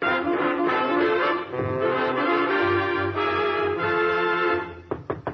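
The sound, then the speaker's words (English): A burst of brassy band music plays loudly, then fades as a few sharp knocks on a door sound near the end, quick and close together. “Somebody's at the door.”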